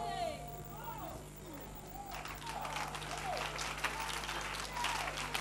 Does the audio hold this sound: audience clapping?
yes